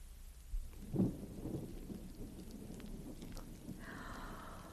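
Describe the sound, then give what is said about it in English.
A storm blows up outside: steady rain hisses throughout while a low thunder rumble rolls in near the start, then fades into a continuous downpour with a brief higher wind-like whine near the end. No voices. “Oh, my, sounds like a storm blowing up outside, doesn't it, children?”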